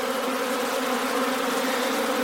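A dense, steady drone of a honeybee swarm buzzing together as the swarm is being moved, with a low hum and layered higher overtones that hold constant without pause and with no voices over it.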